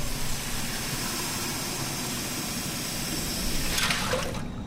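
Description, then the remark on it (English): Steady running water pours into a pot, 9 cups of water to be brought to a boil for making a big vat of coffee, a continuous rushing splash with a low rumble, swelling briefly near the end before settling. No one speaks. “9 cups of water bring into a boil. So we're going to do that.”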